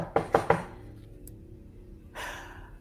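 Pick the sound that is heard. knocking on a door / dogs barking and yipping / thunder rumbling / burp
knocking on a door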